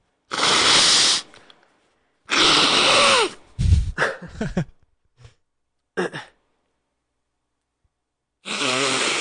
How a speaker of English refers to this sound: Do you mind if I blow my nose on air? Oh, go for it. Please, go for it.